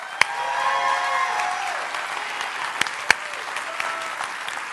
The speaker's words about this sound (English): Clap for him.